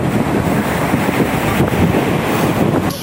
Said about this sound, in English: Others watched from the promenade as the wind and waves pummeled the shoreline, many in disbelief of what they were seeing. One man still on the pier, stranded in the middle of the storm.